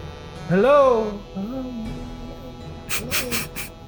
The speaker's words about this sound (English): Whoa, that is weird. Some strange, just hissing noise just emanates from deep in the cavern, just loud and sudden and sharp.